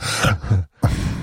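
Breathy exhales through the nose with a faint whistling edge, two airy pushes, a brief pause, then another long breath, loud, with no talking.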